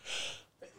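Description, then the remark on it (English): A single sharp, fairly loud sneeze, a breathy burst that fades quickly, followed by a brief faint vocal sound. “God bless you. Bless you.”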